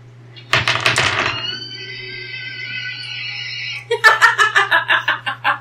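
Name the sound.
horse whinny sound effect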